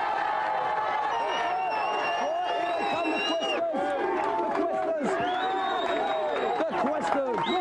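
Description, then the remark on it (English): A studio audience cheers and whoops loudly and continuously for several seconds for a quiz team, many voices blending together with a few high whistles cutting through the roar. “Right, give them a big cheer.”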